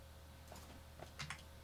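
Several quick keyboard keystrokes tapping in an uneven rhythm, fairly quiet, as someone types the name of a Boss unit to look up its price, over a low steady background hum with no one speaking.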